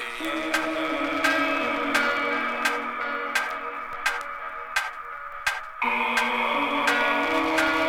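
A steady clock ticking, one sharp tick roughly every two-thirds of a second, layered over sustained chiming, bell-like musical tones. No voices are heard.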